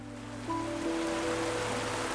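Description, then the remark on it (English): A steady wash of flowing river water rushes continuously at moderate volume, with a soft sustained musical drone underneath and no voices. “The river was always cold.”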